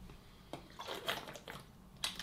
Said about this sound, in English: I'm going to drink a lot of water, which I think what we should do is a pact. When I drink water, you should drink water as well.